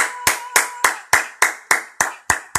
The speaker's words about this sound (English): I need my screaming audience with the claps.